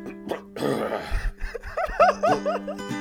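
A rough, raspy throat clearing, followed by a string of short, voiced grunting bursts that rise and fall in pitch, moderately loud with no speech.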